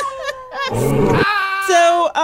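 A loud lion roar, rough and growling in the middle and trailing into drawn-out, rising snarls, with no talking over it.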